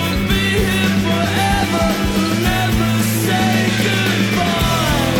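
A loud, dense rock song plays with steady bass and distorted guitars, while a strained male vocal is half-sung, half-yelled over the top throughout.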